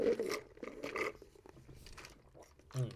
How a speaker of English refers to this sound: Let me take a sip. I got a Minute Maid Zero, no sugar, guilt-free, cruelty-free, no sugar in this Minute Maid.